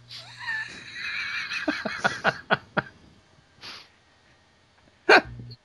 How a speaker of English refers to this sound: Sorry, I had to cough.